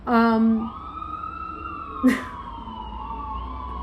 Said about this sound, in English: It's funny how, look at that. The sirens are going off. So it means it's huge.